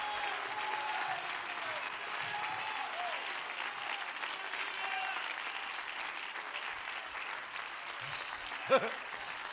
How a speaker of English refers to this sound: everybody in the house, clap your hands and shout unto Jesus with a voice.